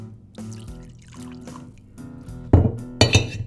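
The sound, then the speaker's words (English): Blended whiskey from an infinity bottle glugs into a glass in short gurgling bursts, followed by two louder glassy clinks near the end. No one speaks. “Little pour. It's got a good swirl.”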